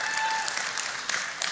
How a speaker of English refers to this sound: Morning, Venture. Yeah, you can give the Lord a clap this morning. That's good. You can do that.